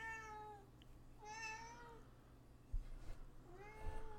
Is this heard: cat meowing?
yes